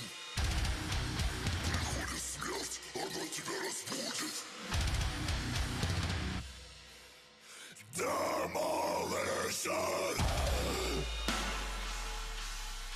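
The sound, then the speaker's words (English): A man makes loud, guttural gargling noises with Russian-sounding words, then breaks into harsh, strained screaming up into the air for an audience, not into the microphone, intense, with heavy low rumbling underneath throughout. “But before he screams …, he starts just gargling some shit in Russian.”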